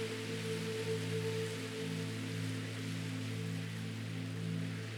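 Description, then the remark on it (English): A steady, even wash of ocean water hisses continuously over the sand at the shore, like gentle surf, with low sustained humming tones underneath and no voices. “As we enjoy the warmth of the sun and the sound and feel of the water, let's take in a few more nice, deep breaths.”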